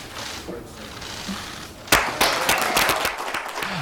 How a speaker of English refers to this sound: I guess they turned on the applause sign at that point.